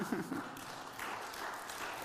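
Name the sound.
audience clapping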